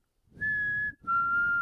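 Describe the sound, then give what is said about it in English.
Two sustained whistled notes, the second slightly lower and not quite matching the first, each held for about half a second with a brief gap between, fairly loud and alone. “And this part got even scarier because Yvette is like, and then the whistle goes.”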